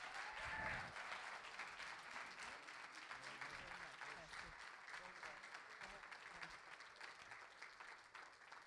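Sustained audience applause welcoming a special guest, a dense steady wash of many hands clapping at an even loudness for several seconds, with a brief tonal whistle or cheer near the start.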